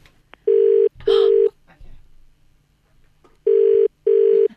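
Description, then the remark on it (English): A telephone ringback tone sounds twice in a steady double-ring pattern, loud and clear with a pause between pairs, over faint background rustling and no talk. “Okay, now, girls, we need to make a phone call.”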